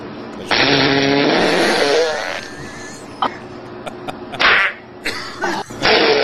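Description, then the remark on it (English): A loud, drawn-out fart played from a video clip, buzzy and rasping, lasts about two seconds. It is followed by quieter background noise and a few short, sharp bursts of sound. “Let's hear a fart again.”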